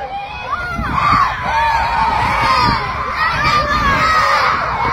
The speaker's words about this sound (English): Look at these kids screaming.